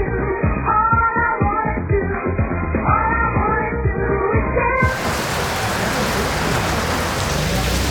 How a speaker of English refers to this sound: And the rain is coming down here in Glebe Point Road. We're here at the Bad Manners Cafe and we're just about 3 centimetres away from an ocean, aren't we? The heavens have opened.